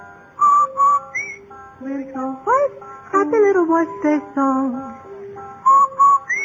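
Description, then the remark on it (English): A bright, clear whistled wash-day jingle for Rinso soap: a short, cheerful tune of sustained notes gliding up and down in a bouncy rhythm, fairly loud, with no talking. “No wonder Rinso users whistle while they wash.”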